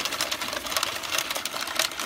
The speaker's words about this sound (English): It's an auto card shuffler. That ain't a money counter.